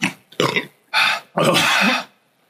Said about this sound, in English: It's the hottest thing ever. Oh, hiccups. It's the hottest thing I've ever eaten in my life.